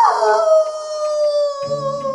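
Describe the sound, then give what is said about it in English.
A dog lets out a long, sustained howl, loud, holding a steady pitch with rich harmonics before a lower tone joins in near the end. No one speaks. “Wolves are known for howling, so it must be... Ooh, a wolf. Nope, it's a dog again.”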